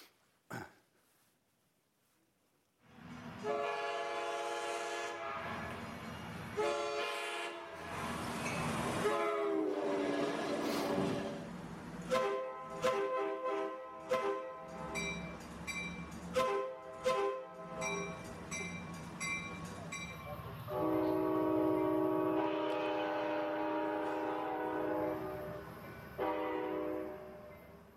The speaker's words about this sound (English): And I think we actually have a little clip of various American train horns. So here we go.